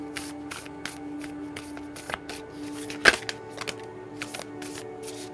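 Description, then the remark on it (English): Cards being shuffled: a run of quick, soft papery flicks and riffles over a low steady hum, with one sharper snap partway through as a single card, Sea Spirit, is drawn. No one speaks. “What can we get? One card.”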